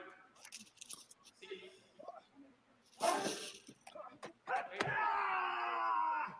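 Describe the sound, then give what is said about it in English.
Heavy forearm strikes in a wrestling tournament match land as a few sharp, loud smacks, one near the middle and another shortly after, followed by a swell of crowd noise and voices. “Heavy forearms from Okada.”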